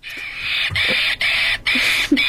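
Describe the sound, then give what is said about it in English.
A keyboard-sampled monkey screech plays as four loud, shrill, sustained bursts in quick succession, each cut off sharply, with no voices. “Hey, come on, it's a monkey!”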